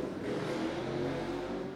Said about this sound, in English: Okay. And the motorcycle meetup has ended. Has ended.